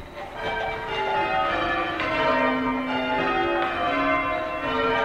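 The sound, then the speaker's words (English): Change ringing at the University of Chicago: church tower bells, each rung by a ringer pulling a rope, peal one after another in a continuous cascade, their overlapping tones ringing loud and full with a steady rolling rhythm and no voices. “They ring their bells one after another, making a waterfall of sound.”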